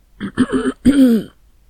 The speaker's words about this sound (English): I said, clearing my throat.